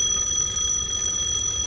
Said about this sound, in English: There was a payphone on the sidewalk, so I started towards that. Just as my hand touched the phone to make the call, it started ringing.